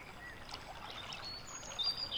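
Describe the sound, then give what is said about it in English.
River water flows steadily with a soft, continuous rushing wash in the afternoon, where a person is fishing and has caught a catfish, fairly quiet and even throughout, with a few faint high chirps near the end. “Nobody's ever said hi to me from the river before.”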